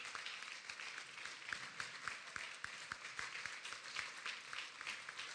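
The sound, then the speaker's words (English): An audience claps together as people come forward, a steady, dense patter of applause, with sharper individual claps standing out at a fairly regular rhythm throughout. No one speaks over it. “Can we give them a hand clap while they come?”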